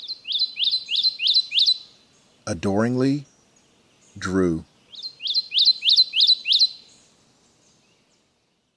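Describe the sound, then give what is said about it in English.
A Kentucky warbler sings a loud, rolling series of five or six rapid, identical phrases, pauses while a person speaks briefly, then repeats the same ringing run of phrases. “Letter to a Kentucky Warbler”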